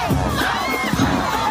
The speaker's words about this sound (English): And the crowd went absolutely wild.